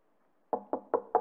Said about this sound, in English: and they knock. They knock on your door.